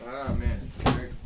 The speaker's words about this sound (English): Slamming the doors.